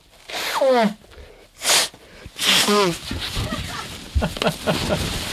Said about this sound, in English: And I'm going to blow my nose real fast.